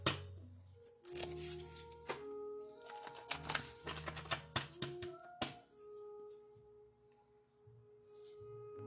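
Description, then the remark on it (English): A deck of cards is shuffled in several bursts of quick papery riffles and taps, pausing between rounds, while soft sustained tones hum in the background. “I did shuffle last night, so I'm going to go ahead and shuffle again just to kind of get a fresh start here.”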